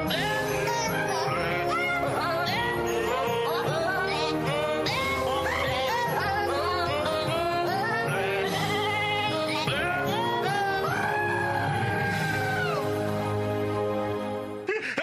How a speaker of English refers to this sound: Screaming goats on the doghouse. Here they are with a conductor singing, "We Wish You a Merry Christmas."